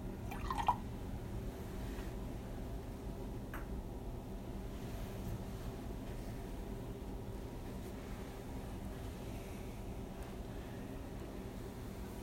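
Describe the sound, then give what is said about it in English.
A few faint drips and a brief trickle of water poured into wine in a chalice, over a steady low hum. “God, who in creating human nature did wonderfully dignify it and still more wonderfully restore it, grant that by mysterious water and wine we may come to share the divinity of Christ who humbled himself to share in our human nature.”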